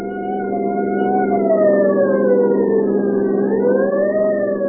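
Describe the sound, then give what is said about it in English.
A loud siren wails continuously, its pitch sliding slowly down and back up, over a dense, steady rumble of a driving rainstorm and traffic noise, as a deputy sheriff's car speeds through the gathering night. “The scream of a siren knifed through the din of a driving rainstorm as Deputy Sheriff Douglas Webb and Grover Mull sped through the gathering night.”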